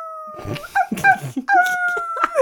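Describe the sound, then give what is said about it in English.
A person imitates a howl with long, steady, drawn-out vocal tones in two stretches, broken by a short burst of talking in between. The voice is fairly loud. “Oh, I want him to howl. He should howl.”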